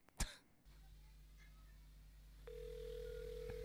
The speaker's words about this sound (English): Oh, another phone call intro. I forgot about the phone calls.